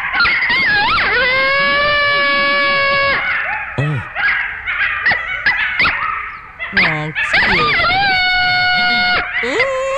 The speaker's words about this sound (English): It's a coyote. Oh, yeah. Okay. Really? That's a coyote.